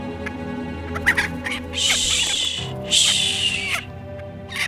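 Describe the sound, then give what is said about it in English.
A chicken, taken from an animal cage and held in someone's arms, clucks and squawks, with a few short clucks followed by two longer, harsh, agitated squawks, heard alone with no voices. “She removed a chicken from one of the animal cages, holding it gently in her arms.”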